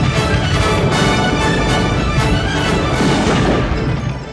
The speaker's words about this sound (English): Wow, something's spooking the cattle. Stampede!